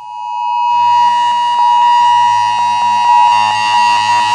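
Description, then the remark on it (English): A loud, harsh Amber Alert emergency tone from a phone, played aloud during a church sermon: a piercing steady buzz with a rapid rhythmic pulsing throughout, sounding alone with no talking. “That's the sound of an Amber Alert.”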